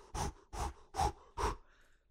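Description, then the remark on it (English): Four heavy, forceful breaths puffed out through pursed lips by a person running, in a quick, even rhythm, loud, with no talking. “just breathing very heavily through like a puckered mouth.”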